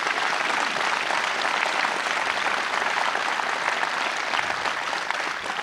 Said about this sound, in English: And let me tell you, whether you're in New York or whether you're in Pennsylvania, we proudly back the blue. Let's give all of our law enforcement officers a round of applause.